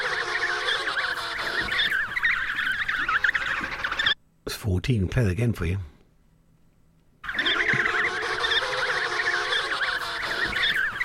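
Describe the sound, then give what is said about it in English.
A dense chorus of penguins calling, with harsh, braying, overlapping honks that go on steadily. It breaks for a short spoken remark and a moment of silence, then the loud calling resumes. “It's penguins.”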